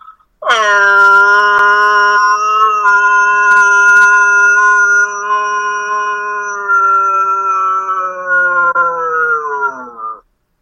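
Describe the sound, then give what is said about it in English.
A man imitates a wolf with one long, loud howl held for about ten seconds, the pitch sliding down at the start and sagging as it fades out. He does this before matches. “That sounded like a dying wolf, not like a. That is not a healthy wolf.”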